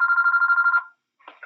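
A telephone rings with a rapid, warbling electronic trill for most of a second, fairly loud, then stops; a brief bit of talking follows after a short pause.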